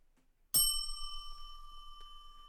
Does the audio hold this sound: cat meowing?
no